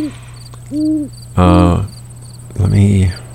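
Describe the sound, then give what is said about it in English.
An owl hoots a few times outdoors at night, softer calls first and then two louder, fuller hoots, with crickets trilling steadily in the background and a faint low hum. “I've got the owl to keep me company.”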